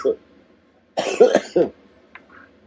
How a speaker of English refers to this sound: Sorry, still overcoming that freaking cough.